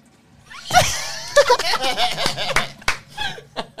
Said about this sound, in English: No! No! You hear the belt.